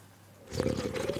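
Sounds of someone drinking Coke: after a brief quiet moment, wet gulps and a soft fizzing hiss start up and carry on steadily. No one speaks.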